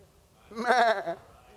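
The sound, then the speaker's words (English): A person imitates a sheep with a single wavering "meh" bleat, fairly loud, lasting about half a second with quiet before and after. “And Samuel said, what meaneth this bleating of the sheep?”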